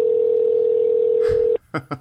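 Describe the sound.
A steady, unbroken telephone tone hums for about a second and a half as a dialed call goes unanswered, then cuts off abruptly as a voice begins talking.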